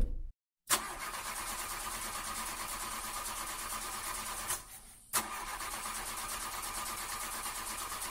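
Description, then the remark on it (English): A Lamborghini sports car engine cranks loudly without catching, grinding in two long attempts separated by a brief pause, with no voices. “Okay, well, it's not starting.”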